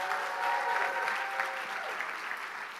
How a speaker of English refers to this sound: Can we give them a huge round of applause?